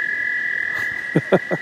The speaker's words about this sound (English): I don't know if you can hear those frogs.